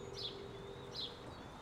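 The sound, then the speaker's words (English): Two brief, high-pitched calls from hawks standing in steady rain late in the day at the start of monsoon season, with lightning, sound a moment apart, faint, over a steady low background hiss. “Lightning splits the sky as the raptors call to each other, their calls bouncing around the darkening night.”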